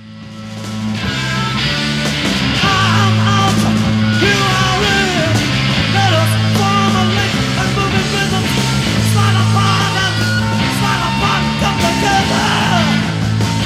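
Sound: rock song played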